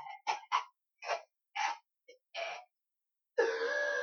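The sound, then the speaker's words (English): A burst of harsh, breathy coughs comes in quick succession, several sharp hacks followed by a longer rasping, wheezy exhale, fairly loud with no talking over it. “You're trying to tell me you can't beat a vandal because of a cough?”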